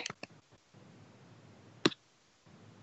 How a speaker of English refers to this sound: And I typed numbers in Skype, and Skype's like, who do you want to call?